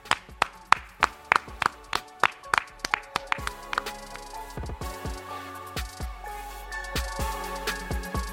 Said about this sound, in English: Clap it up.